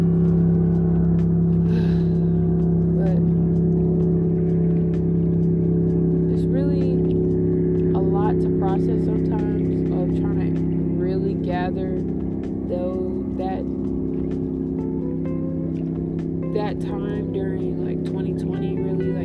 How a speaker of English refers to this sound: There's a boat coming.